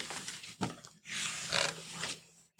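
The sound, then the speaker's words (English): A loud, raspy donkey bray, apparently voiced by a person imitating it: a short wheezy 'hee' followed by a longer, drawn-out harsh 'haw', alone. “I was walking down the road and I saw a donkey. Hee-haw!”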